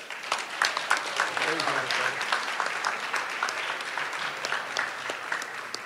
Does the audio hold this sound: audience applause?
yes